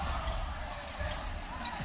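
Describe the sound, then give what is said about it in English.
A basketball is dribbled in the front court during a game between FIU and the Raiders, a few steady low thuds spaced about every second, set against a constant wash of arena crowd noise and faint murmuring voices. “Backs up on the dribble.”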